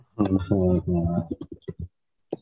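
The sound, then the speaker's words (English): A quick run of sharp clicks from computer keys follows a brief voiced sound, with a single key press after a short pause. The clicks are moderately loud. “there's something wrong with my keyboard.”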